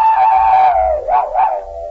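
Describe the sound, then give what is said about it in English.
On the Jell-O program, a National Broadcasting Company radio broadcast, a man imitates a hound's howl, a sustained, wavering vocal tone that dips and swells twice before trailing off, loud with no other talking. “You want to howl now?”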